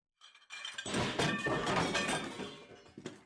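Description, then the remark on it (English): Ceramic bowls of hot soup on a tray crash and shatter as a woman falls onto them, a dense burst of breaking pieces and clinking shards that spills on for a couple of seconds, with a final scattered clatter as fragments settle. No voices. “As Janet heard her animalistic wail and the shattering of the bowls”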